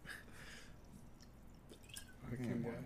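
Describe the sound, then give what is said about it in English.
Liquid trickles and splashes softly into a glass for a few seconds as a double is poured, quiet, while a voice murmurs faintly toward the end. “I feel like everybody's watching me pour, man.”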